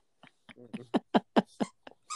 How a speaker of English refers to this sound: I tried to take away the squeaky toy and she was not happy.